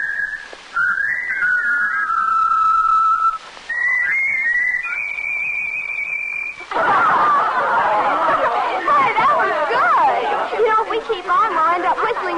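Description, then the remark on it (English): A person whistles a clear, sustained tune for several seconds, with one brief pause, before the whistling gives way to a loud babble of many voices chattering at once. “Whistling is okay, but it's what I call a limited sphere.”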